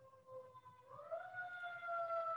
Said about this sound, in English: And we end with sirens.